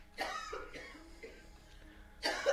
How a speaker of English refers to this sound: Wait, clear your throat. I did.